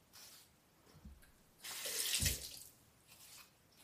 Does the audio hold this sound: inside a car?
no